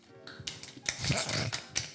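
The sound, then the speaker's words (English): A few sharp finger snaps, crisp and bright, made in place of claps, land at irregular intervals over a low, murmuring background. No one speaks. “those are literally not claps. You're snapping.”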